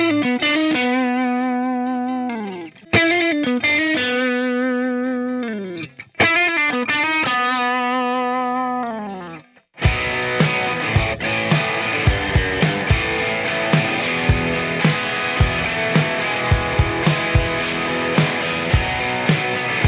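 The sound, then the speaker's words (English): A distorted electric guitar played through a 50-watt Marshall plexi amp plays sustained, bending chords for about ten seconds, then shifts into a dense, loud chugging riff with sharp rhythmic accents, all without any talking. “So it's demoed with a 50 watt plexi, like Marshall plexi thing in bias.”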